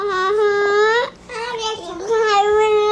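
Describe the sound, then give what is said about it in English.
A toddler boy fusses, letting out loud, whiny wails broken into three drawn-out bursts with a brief pause between, the voice wavering like a cry mixed with babble. “I gotta tell you, one of the best things about the early toddler stage is the boy could be talking back to me. I just can't tell.”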